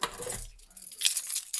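A bunch of keys jangles, a quick flurry of bright metallic clinks and rattles lasting under two seconds, with no one talking.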